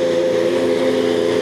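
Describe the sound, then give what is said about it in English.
A Chevrolet IndyCar engine warms up in a garage at Gasoline Alley, the car stationary; it runs loud, a strong buzzing drone held at high revs with a slight waver, and no voices. “It's a sweet sound. It's one that draws people near. A crowd gathers to see what's going on. The car is stationary, but it's moving fast.”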